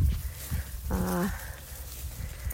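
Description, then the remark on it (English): A female dog, staying with her breeder for health testing, lets out a single short, high whimper, a thin whine that rises briefly and then fades against a quiet, slightly noisy background. “this time I have a dog staying with me who is, again, a dog I bred.”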